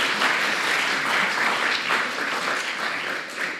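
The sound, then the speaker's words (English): A birthday round of applause from a group, steady dense clapping that holds an even level for several seconds before easing slightly at the end, with no voices over it. “She can have a birthday round of applause if you like.”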